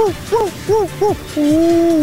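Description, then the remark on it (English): A person's voice imitates a hawk call as a noise for the XFL football team the Battle Hawks: four quick, arching cries in a row, then one long drawn-out screech, loud with no other talking. “That's the worst impression of a Battle Hawk I've ever heard in my life.”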